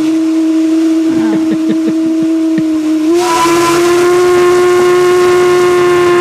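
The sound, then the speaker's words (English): A steamboat whistle, played from a phone, blows one long, loud, steady blast with a rich harmonic tone, swelling brighter and hissier midway and holding to the end, with faint clatter underneath early on. “That's the steamboat whistle.”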